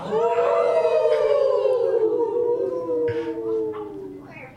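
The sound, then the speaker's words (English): A person imitates a wolf howl with one long, loud, wavering tone that slowly falls in pitch and fades slightly toward the end, with no other speech. “You feel yourself turning into a wolf and you need to howl.”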